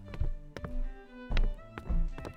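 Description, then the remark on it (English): Three men walk through a back door into a basement, their heavy footsteps thudding at an unhurried, fairly even pace over a steady low tonal hum in the background. “The three men walk into the basement through a back door.”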